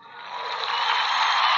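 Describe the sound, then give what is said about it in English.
A burst of crowd applause, a dense crackling wash of many clapping hands that swells steadily louder over under two seconds, with no voices. “Yes, the crowd loves it.”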